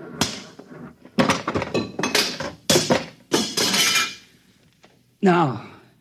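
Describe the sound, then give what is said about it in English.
A series of loud, heavy crashes and metallic clattering blows, coming in irregular bursts as a big machine that controls a buzzer is smashed, followed by a short pause and a voice calling out at the end. “I'm going to smash it.”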